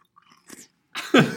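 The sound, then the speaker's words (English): Wet, mushy chewing of soggy frosted cereal flakes that are already pretty wet, a few soft smacking bites building from faint clicks to louder squelchy mouthfuls, with no real crunch. “can you give us a crunch? I'll cry. It's already pretty wet.”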